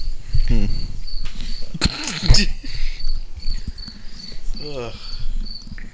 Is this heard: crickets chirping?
yes